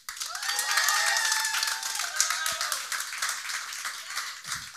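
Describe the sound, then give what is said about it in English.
An audience breaks into a steady round of applause for Esteban Serrano, creative director of Yo MTV Raps, dense crackling claps sustained for several seconds, with a few high whooping cheers rising over it early on before the clapping thins slightly. “Everyone give another round of applause to Esteban Serrano.”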